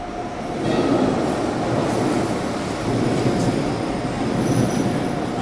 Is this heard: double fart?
no